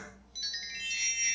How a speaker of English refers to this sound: It's a magic wand. Oh, it's a magic wand now. Sounds what? Like a notification for an idea you have.